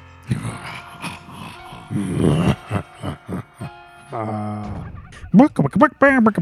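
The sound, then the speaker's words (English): A chicken, Captain Spaulding's chicken from the film House of a Thousand Corpses, clucks in a quick series of sharp, rising squawks near the end, following a stretch of muffled voice-like sounds and a steady droning tone; fairly loud. “Spaulding's chicken.”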